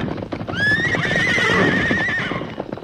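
A horse lets out a long, loud, rising whinny that holds for nearly two seconds over the rumble of galloping hooves from a group of mustangs, led by the horse Silver to a gate, without any talking.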